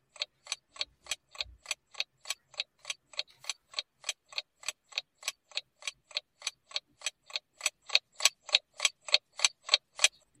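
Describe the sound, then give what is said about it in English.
A clock ticks steadily, about two and a half crisp ticks per second, the ticks growing slightly louder toward the end. No voices, just the regular mechanical rhythm. “That's the clock ticking down on Brendan's job.”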